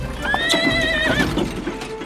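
A horse lets out a loud, wavering whinny while hooves clip-clop steadily underneath, the hoofbeats carrying on after the neigh fades.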